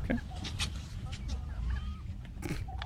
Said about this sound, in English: Yeah, the these turkeys. Yeah, watch this cameraman Check trying this to get out. A shot here. And turkey, All right. Turkey fights back here.